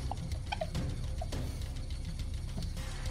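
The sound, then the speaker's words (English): Marker pens squeak as trivia quiz players write their answers, in short, high-pitched chirps and scrapes at an irregular pace, scattered over a steady low hum with no one speaking. “You know how much I love hearing the pens squeak like it's a basketball game.”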